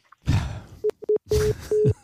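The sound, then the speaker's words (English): A phone line cutting off: a couple of loud handset clunks and rustles, broken up by short, steady electronic beeps of a disconnect tone, repeating several times. “Have they both hung up?”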